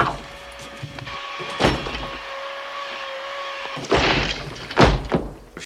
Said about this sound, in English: And he kicks down the door? He kicks the door?